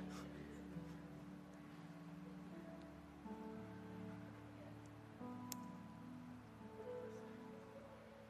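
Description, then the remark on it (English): Steady, soft rain hissing continuously throughout, with a low droning hum and faint sustained tones underneath; no clear speech, and the whole scene sounds fairly quiet and even. “In between the rain and the thunder and the special effects.”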